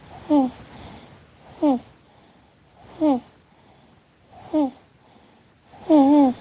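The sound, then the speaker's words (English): A baby snores in a voice-note recording, five short voiced snores with a slightly whiny, wheezy pitch, evenly spaced about every second and a half, with quiet breathing hiss in between. “And we had to lose two takes from a video because my child was snoring in the background.”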